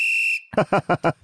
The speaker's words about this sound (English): could you drop in a whistle here for to start the game?